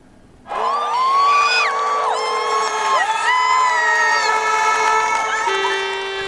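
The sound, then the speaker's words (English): A large crowd at a pro-EU rally in Poland, protesting against a possible Polish exit from the European Union, cheers and shouts after a brief quiet start, a loud, sustained wall of many overlapping voices with rising and wavering pitched calls that carries on without a break. “Massive crowds rallied in support of the EU amid fears Poland could eventually split with the bloc.”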